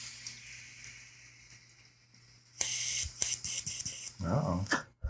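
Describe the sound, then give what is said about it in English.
A quiet hum gives way to a sudden burst of hissing, crackling sizzle, bright and popping, as Sour Sequoia cannabis concentrate vaporizes in a J-Man Connect; it continues steadily for a couple of seconds with a brief lower gurgle near the end. “Hear it sizzling.”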